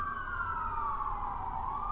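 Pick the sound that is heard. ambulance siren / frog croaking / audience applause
ambulance siren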